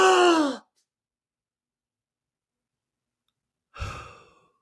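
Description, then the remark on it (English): A person breathes deeply and deliberately: a deep, voiced sighing exhale opens, followed by about three seconds of silence and then another loud, breathy rush of air that trails off. It is clear, with no talking. “I mean, that breath right there is as good as any of those heroin injections.”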